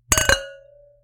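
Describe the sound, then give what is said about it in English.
Glasses of white Sauvignon Blanc wine clink together in a quick toast, two bright taps followed by a clear ringing tone that fades over about a second, with no talking. “Okay. Yo, let's cheers.”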